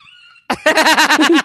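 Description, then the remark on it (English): A voice imitates a dog's yelping holler: a quick string of about eight loud, high yips in rapid rhythm, preceded by a brief faint whine. “Did the dog holler like that?”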